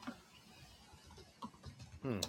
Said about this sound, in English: As I'm typing in Rollerball right now.